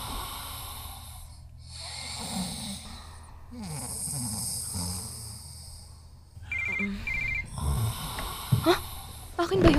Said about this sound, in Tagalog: Phone mo, ingay-ingay. May tumatawag ata sa'yo.